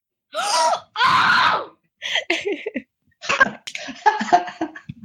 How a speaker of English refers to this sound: Oh! You just hear me screech.